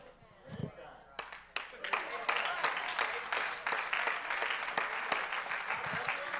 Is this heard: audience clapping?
yes